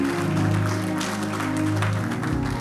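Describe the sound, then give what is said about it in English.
A church audience at LifePoint Church claps to celebrate God after a prayer, filling the whole stretch with a dense, steady patter of many hands at a fairly loud level, with a sustained low musical hum running underneath. “You want to put your hands together and celebrate God?”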